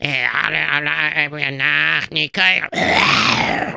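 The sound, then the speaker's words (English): A man clears his throat: a long, buzzy voiced grunt with a brief break, then a harsh, raspy rush of noise at the end. It's fairly loud, with no speech around it. “I clear my throat.”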